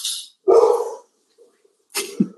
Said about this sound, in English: Today's episode is brought to you by my dogs who are barking and protecting.